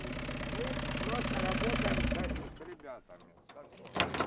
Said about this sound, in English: Eventually, a battered white van pulls up.